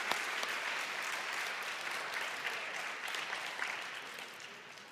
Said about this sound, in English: At this time, I know it's cliche, but I would like to give a round of applause to everybody that's here. Thank you.